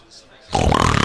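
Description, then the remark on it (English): After a half second of near silence, a person abruptly imitates another man's loud snore with their voice, a harsh, rattling burst that starts out of nowhere and holds steady to the end. “has this crazy snore”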